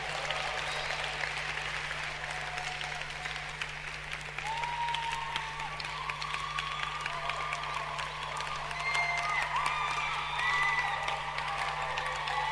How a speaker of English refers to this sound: If you have got two hands, clap your hands for Jesus.